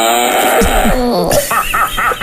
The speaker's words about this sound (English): And I'm telling you, if you're a mom and you got a son, if you're a dad, you got a daughter, the Ultimate Fart Soundboard is going to change your existence.